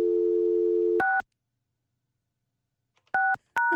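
A steady telephone dial tone hums for about a second, then cuts to a keypad beep, and after a silent pause two more dual-tone dialing beeps sound, clear, with no voices.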